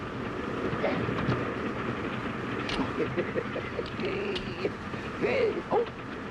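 A train rumbles steadily along the rails with a continuous, fairly loud clatter, broken by scattered metallic clicks and knocks, and faint voices can be heard in the background.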